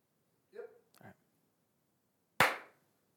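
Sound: hand clap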